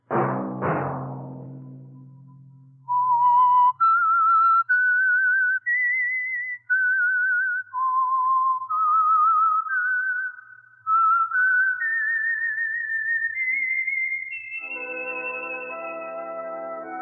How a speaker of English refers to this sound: Let that whistle be your signal for the Signal Oil program, The Whistler.